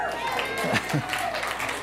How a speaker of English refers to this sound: the old people are here, clap. Okay, we'll go with it.